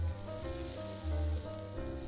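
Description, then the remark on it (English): Chicken Alfredo lasagna sizzles steadily in a hot pan in the Bronx, New York City, a continuous crackling hiss with a low droning hum running underneath and no voices. “as you can hear, the sizzle.”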